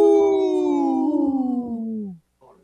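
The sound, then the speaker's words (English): A human voice on Native Roots Radio imitates a wolf howl for Howling for Wolves, one long sustained wavering cry that slowly slides downward in pitch and fades, with a brief faint sound after it. “This portion of the show is supported by Howling for Wolves, protecting wolves for future generations. Howl!”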